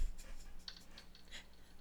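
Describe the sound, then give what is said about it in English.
Dice being rolled to decide who goes first, after picking numbers between 1 and 6: a few faint, light clicks and taps scattered over a couple of seconds, soft and irregular against a quiet low hum. “We have dice here to see who goes first.”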